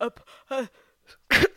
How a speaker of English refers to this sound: Excuse me. I'm sorry. She rifles around and pulls out a handkerchief and kind of dabs at her nose. I have an elixir for that. Don't sneeze again.